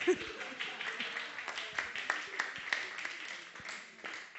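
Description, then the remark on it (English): An audience claps steadily for several seconds, a moderate burst of overlapping hand claps that stays fairly even in loudness before starting to thin out near the end. “You can applaud.”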